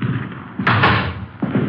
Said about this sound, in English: All right. Let's try it. Front door open. Let's see. Yeah, let's go. All right.